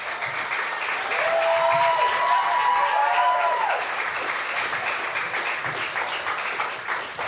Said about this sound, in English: Come on, you give them a clap.